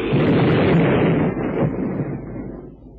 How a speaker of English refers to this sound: Well, what a caper. His boat blew up.